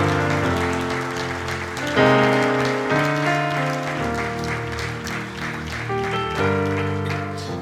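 crowd, audience clapping hands

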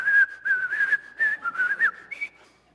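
human body sound, person whistling a tune

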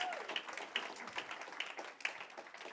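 crowd, round of applause

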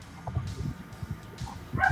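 animal, small dog barking

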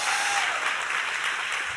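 crowd, audience applause and cheering

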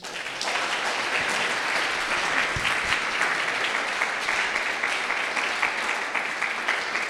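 crowd, big round of applause

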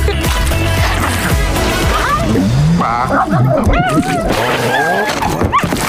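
animal, large dog barking

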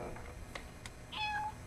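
animal, cat meowing

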